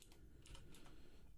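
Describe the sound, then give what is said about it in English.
Soft, quick clicks of typing on a Japanese computer keyboard, a few scattered keystrokes over a low background hum, ending in a sudden louder thump. “My keyboard is messing up right now.”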